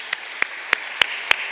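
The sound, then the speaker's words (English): Clapping for a group of American Rhodes scholars, in a slow, even rhythm, about five sharp, crisp claps roughly a third of a second apart, over a faint steady hiss, with no one speaking. “I'd like everybody to give this group a round of applause.”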